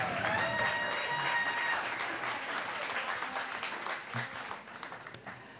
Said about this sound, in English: Oh, can we get a big round of applause for our band tonight?